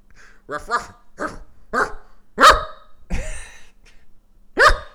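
A dog barks repeatedly, loud sharp yaps in an irregular series of about seven, some coming in quick pairs, with short quiet gaps between them.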